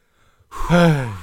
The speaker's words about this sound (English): Heavy breathing.